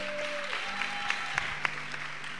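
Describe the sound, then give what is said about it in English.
A church audience claps together for a preacher in steady, sustained applause, with a few sharper individual claps standing out and a faint electrical hum underneath. “Let's clap for him.”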